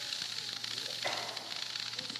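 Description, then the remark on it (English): Steady hissing of steam coming out of water, a broad airy rush that holds at an even level throughout, swelling briefly in the middle, with a faint low hum underneath. “It's still, what is the chemical makeup of this steam that's coming out?”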